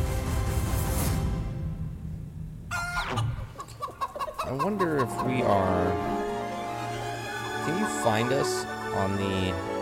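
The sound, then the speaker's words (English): A chicken clucks repeatedly in short, bouncy bursts, fairly loud, over a busy background with some voice-like sounds mixed in. “Falling in love with a chicken.”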